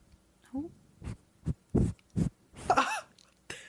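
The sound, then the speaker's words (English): A cat named Juniper huffing heavy breaths into a microphone: about six short, muffled puffs in an uneven rhythm, loud and low, with a brief higher-pitched vocal sound near the end. “Breathing into the mic like a little really creep. Intense deep breaths.”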